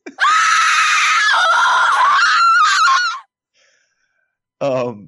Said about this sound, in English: You made me lose my train of thought with a shrieking woman's sound.